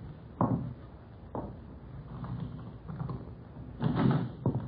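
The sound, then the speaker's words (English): A door being opened: a couple of solid clunks, then a longer rattling scrape as it swings, with a final knock, over a low background hum. “I'll open.”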